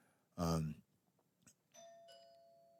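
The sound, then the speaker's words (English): A doorbell chimes twice in quick succession, its clear electronic tones ringing out and slowly fading; a short, loud vocal burst comes just before. “And there sometimes is the bell, and that's okay.”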